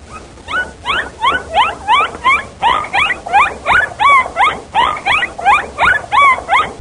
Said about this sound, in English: It was a recording of a bottlenose dolphin.